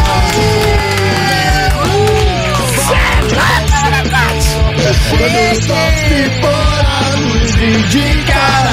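A large crowd cheers and yells loudly and continuously, with many overlapping voices and a dense wash of applause-like noise over a steady low hum throughout.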